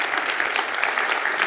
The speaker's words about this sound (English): So all of our learning center staff, give them a big hand clap. We thank God for you, what you're doing.